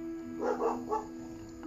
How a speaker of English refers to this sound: And those are my dogs. I apologize.